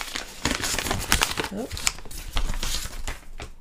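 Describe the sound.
Crisp rustling and crinkling of a sheet of paper being shuffled and handled in quick irregular bursts, with a brief murmur of a voice partway through.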